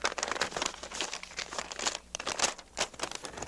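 A paper letter from Epic Records is unfolded with dense, irregular crinkling and crackling, a steady rustle of sharp little crackles that pauses briefly midway before resuming. No one speaks.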